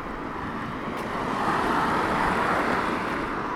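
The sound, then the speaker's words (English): Steady road traffic rumbles past on the approach to the Oracle, a broad continuous wash of vehicle noise that swells a little louder after the first second and stays constant, with no voices. “As you can hear, we're approaching the Oracle. There was actually some traffic there.”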